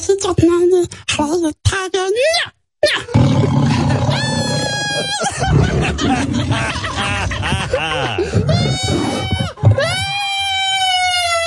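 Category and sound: animal, tiger roaring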